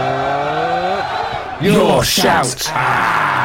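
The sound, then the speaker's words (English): A short produced jingle: a voice calls out a brief title, then a loud burst of crowd cheering and roaring swells in and carries on to the end. “Well, yeah, you were very inspirational with your impromptu jingle a couple of weeks ago,”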